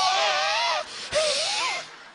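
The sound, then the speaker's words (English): A person imitates their own heavy panting from walking up a hill, pushing out two long, loud, rasping breaths, each with a wheezy, wavering voiced tone running through the hiss. “I'm walking like a mountain goat up through there, breathing like a hippopotamus.”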